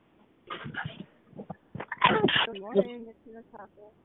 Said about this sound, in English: God bless you, whoever that was.